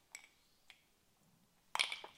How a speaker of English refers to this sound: One more sip of banana liqueur. Just one cube of ice